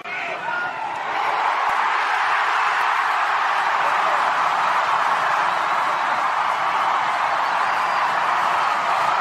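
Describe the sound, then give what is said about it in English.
A stadium crowd erupts in cheering at a North Melbourne versus Lions football match in Melbourne in 2023, as O'Loughlin takes a free kick; a dense, loud roar that swells within the first second and holds steady throughout, with no clear voices above it. “We have not heard a crowd like this in 2023 as North Melbourne, 4-3-27, lead the Lions 3-2-20 on the Triple M Beacon Trade scoreboard.”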